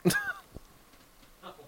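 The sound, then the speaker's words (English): Nacho, an old cat, sniffs right up against the microphone in an outdoor studio: one loud, breathy burst, a soft tap, then a fainter puff of sniffing a moment later, with no voices. “All right, so your name's Nacho, and you're a cat, right? Sniffing the microphone.”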